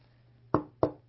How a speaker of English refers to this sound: Do you hear the knock? The knock of Jesus Christ. He's always knocking.